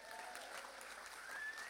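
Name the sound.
weak audience clapping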